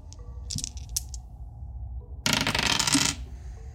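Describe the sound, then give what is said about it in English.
A few light clicks and rattles, then a burst of dice tumbling and clattering across a hard tabletop for under a second, fairly loud, rolled for a spellcasting roll in a tabletop game, with no voices. “Let's roll my dice.”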